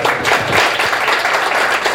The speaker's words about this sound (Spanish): Agradecerle también a nuestros invitados, con un aplauso, por favor.